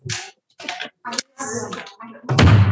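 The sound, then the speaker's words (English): A series of metallic clacks and scraping bolt slides from a Foley prop door fitted with practical slide bolts and locks, used for travel shows, several separate bursts in quick succession, ending in a louder heavy thud as the door is shut. “Is Foley door I use for travel shows?”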